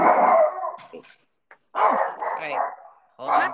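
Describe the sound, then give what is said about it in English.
A dog running alongside a golf cart barks in a few loud, drawn-out bursts separated by short pauses, with some yipping, whiny tones between barks and no other sounds around it. “Well, somebody is driving their golf cart, letting their dog run along.”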